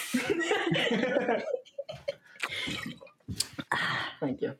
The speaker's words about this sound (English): Check out the bottle. Close to the mic so we can hear the gulps.